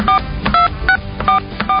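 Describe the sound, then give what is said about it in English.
Five telephone keypad tones beep in a steady rhythm as a phone number is dialed, each a short two-pitched electronic chirp, sounding thin and band-limited as if heard over a phone line with faint background noise. “Phone number. Guess I should have done this off the air. The long distance code. PIN code.”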